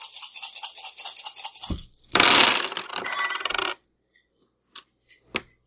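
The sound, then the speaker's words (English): Effect dice in a tabletop game rattle and clatter across a hard tabletop, a busy tumbling burst that settles, followed by a couple of small late clicks as the last ones come to rest. No voices. “You may roll effect dice now, sir, because 3 ones work.”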